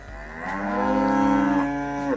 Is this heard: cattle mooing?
yes